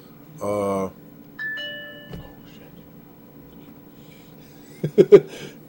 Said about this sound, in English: sorry about the distraction there, ladies and gentlemen, it was just a bell going off, basically.